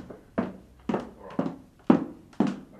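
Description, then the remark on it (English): Angry high heels hurry across a wooden floor, five sharp, hollow clacks in a brisk, even rhythm, fairly loud with nothing else in the background. “Angry high heels in a hurry across a wooden floor?”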